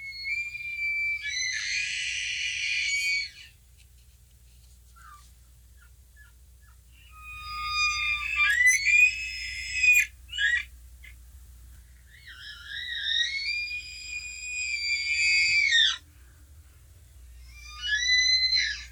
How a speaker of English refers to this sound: Well, if you're on the bush a lot, you'll know that that is an elk, and it is the largest species of deer.